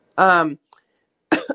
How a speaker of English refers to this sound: Hold on a second. Sorry, I'm about to cough. I have to go off.